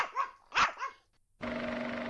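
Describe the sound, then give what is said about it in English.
Three quick, high-pitched puppy barks in the first second, fairly loud, then a steady droning tone with a low hum fills the rest. “Did you like that one, puppies?”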